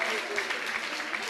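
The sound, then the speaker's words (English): An audience claps steadily for those who succeeded in reciting, a dense wash of many overlapping hand claps at an even moderate level with no one speaking over it. “Let's clap for those who succeeded to recite.”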